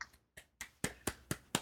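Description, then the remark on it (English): Seven crisp hand claps or finger snaps land in a steady, quick rhythm, getting slightly louder toward the end, with no voices, as applause for Naomi Osaka's plan to skip press at the French Open. “Yes, round of applause for her.”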